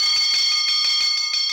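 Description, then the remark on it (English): A rapid, high-pitched bell rings continuously with quick repeated strikes, bright and metallic, fairly loud with no voices present. “Nothing stirs my imagination like an incomprehensibly high-pitched percussive instrument.”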